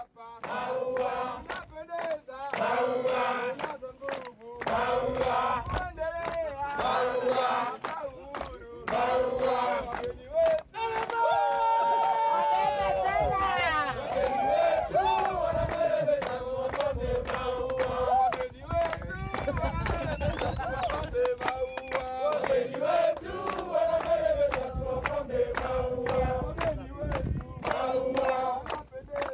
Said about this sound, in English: The guys from Tanzania who were helping us get up the mountain did a sing-song for us, and it was just mind-blowing, like really mind-blowing.